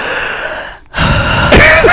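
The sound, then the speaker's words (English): A loud, exaggerated gasping inhale, breathy, after a brief pause, then a sharp raspy catch near the end as a voice imitates labored, heavy breathing. “How the fuck are you breathing on your day to day?”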